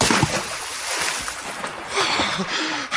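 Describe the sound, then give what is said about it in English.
Water sloshes and splashes as a man climbs out of a boat, a steady churning wash with a few sharper splashes, no talking. “Get out of the boat, Englishman.”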